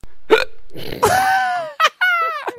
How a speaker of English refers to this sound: You did a bit of a hiccup on the way in.